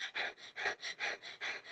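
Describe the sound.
A person imitates rapid open-mouthed panting, a steady series of about seven quick breathy huffs in even rhythm, fairly soft, with no talking during it.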